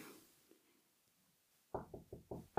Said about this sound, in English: Just then their elderly neighbor came to the door and knocked.